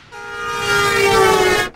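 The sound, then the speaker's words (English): A train horn sound effect, used as the "smack wagon" intro, blares in one long, steady, multi-toned blast over a low rumbling rail clatter, swelling slightly louder before cutting off abruptly after nearly two seconds. “I will give the smack wagon intro here. We're going to do that right now because I feel like the smack wagon is coming.”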